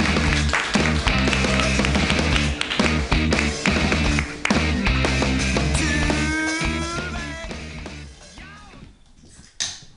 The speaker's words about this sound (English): Hey, guys, clap your hands together.